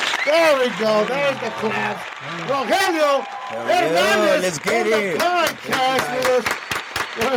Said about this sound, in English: Oh, small little claps here. Small little claps, okay.